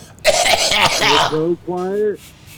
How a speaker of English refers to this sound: Stop coughing